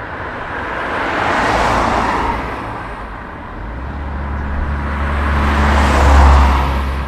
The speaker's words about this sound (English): Cars and trucks rumble along the road that links Cavan with Fermanagh. If they're travelling south to Cavan, they'll shortly arrive in Belturbet. But if they're going north to Fermanagh, in a few miles they'll come to the busy village of Derry Lynn.